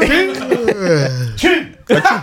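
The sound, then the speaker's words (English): A voice fakes a sneeze and a cough: a drawn-out, falling vocal wind-up followed by two sharp, loud bursts, mixed with laughing vocal sounds. “You just got sneeze and cough.”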